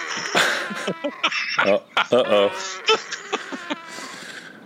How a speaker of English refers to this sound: Space horse is pissed.